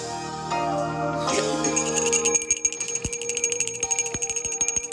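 A handbell is rung to signal that the show is coming to a close, ringing rapidly and continuously, its bright, high metallic clangs pulsing in a fast steady rhythm, loud and insistent after a brief stretch of tonal music.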